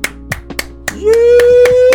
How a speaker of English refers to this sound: Give yourself a few claps. Like, real.